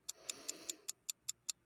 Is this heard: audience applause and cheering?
no